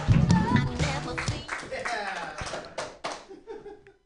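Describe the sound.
A crowd claps and cheers in a dense, steady burst of applause with voices mixed in, gradually thinning out and fading over about four seconds.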